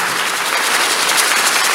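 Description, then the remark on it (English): A church audience claps together for the Lord, a dense, steady wash of many hands with bright crackling texture and no pauses, fairly loud throughout. “So sometimes when you wake up and you, it's a good place to clap for the Lord.”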